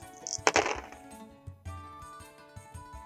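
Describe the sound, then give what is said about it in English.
Dice are rolled, rattling and clattering across a hard surface, a quick burst of clicks followed by a few softer knocks as they settle. No one speaks. “I'm just going to roll some dice, and we'll see.”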